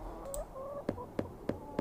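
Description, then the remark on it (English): Four evenly spaced knocks on a tall wooden door in Bewley, sharp and moderately loud, following a short stretch of faint tonal chirping in the background; no one speaks. “Shall we knock again? Let's knock again.”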